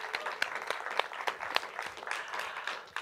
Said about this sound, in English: So I'd like us, before we continue, to give a quick hand clap to my friend and hopefully yours